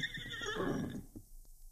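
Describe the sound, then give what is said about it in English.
Sergeant Preston's horse whinnies loudly at his campsite outside of town, a single quavering neigh that rises and trembles for about a second before trailing off into quiet, with no one talking. “Shortly before 7 o'clock, Sergeant Preston stood beside his horse at his campsite outside of town.”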